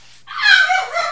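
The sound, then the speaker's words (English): A pet dog lets out one drawn-out, high bark that stretches into a whine, loud, with a faint low hum beneath and no talking, while someone is at the front door. “We've got to hold because my dog's having”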